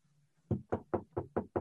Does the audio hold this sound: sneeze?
no